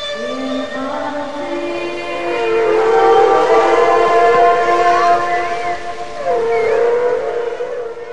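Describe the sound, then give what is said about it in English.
Whale song: long, moaning calls with rich overtones that slowly rise, fall and swoop, sustained and fairly loud over a soft watery hiss, with no voices. “But even though the power of whale song had faded, the need for it remained.”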